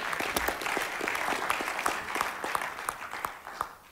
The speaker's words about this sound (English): Yeah, that deserves a clap.